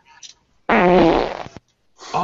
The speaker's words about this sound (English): That was supposed to be an old fart sound. Did Pepper just burp? Oh, God. Pepper's upstairs.